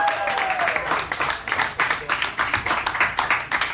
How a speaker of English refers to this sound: Let's get everybody from round two back to the stage. Big round of applause for all your round two comics.